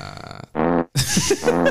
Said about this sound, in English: I'd like to say sorry to all our female listeners for the fart noises.